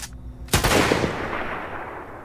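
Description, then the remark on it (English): After a brief low hum, a single loud rifle shot sound effect from freesound.org cracks out sharply, followed by a long rumbling tail that fades slowly over the next second and a half. No voices. “From a sound design standpoint here, the drone and the rifle sounds both came from freesound.org.”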